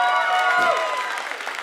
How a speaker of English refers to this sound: I mean, you're clapping. That's a nice golf clap, but in a second, you're going to really clap.